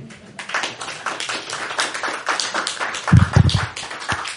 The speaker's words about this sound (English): So, I would like to give you all a round of applause for bringing Mashiach now.